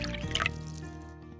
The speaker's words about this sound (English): Work is done for the day. Pull up a chair, have a seat, I'll pour you a drink, and let's get started.